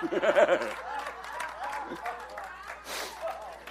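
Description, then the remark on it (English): Women in an audience applaud with a dense wash of clapping, and high-pitched cheering voices rise over it at the start. The clapping carries on steadily for several seconds, with some chatter mixed in. “You know, this is the women who are clapping.”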